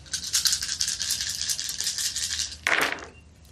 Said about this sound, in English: He then rolls the dice. Roll them.